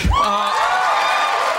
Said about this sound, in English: He starts to speak when he gets cut off by the studio audience, because by this point, the studio audience would obviously cheer when any of the main cast walked in. I'm sure that would have hampered the recordings a little bit.